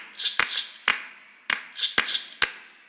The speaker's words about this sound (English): Here's some loose hand claps. Some percussion.